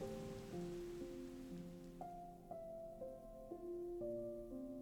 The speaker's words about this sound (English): The sound of thunder filling up the entirety of the universe. Filling up your insides and your outsides. Nothing left out, just the thunder and the sound of the rain.